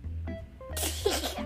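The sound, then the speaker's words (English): A voice performs a big, exaggerated Tyrannosaurus sneeze in a story reading: a short breathy build-up, then one loud, noisy, explosive burst that trails off. “That sneeze blew Edna out of his mouth, soaring across the forest and straight into a giant redwood tree.”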